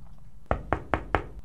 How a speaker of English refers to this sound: Her life changed that day with a knock at her office door.